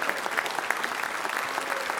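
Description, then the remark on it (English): A crowd claps together in praise to God in a dense, steady burst of applause that fills the whole stretch, many hands at once with no pauses. “Now, would you give God a great big hand clap of praise?”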